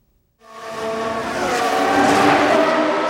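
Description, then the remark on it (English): A high-pitched racing engine bursts in after a brief silence and screams steadily, growing louder as Formula One cars speed past on the track in Austin, Texas. No voices are heard. “The fans are revved up, and the cars are on the track in Austin, Texas this weekend.”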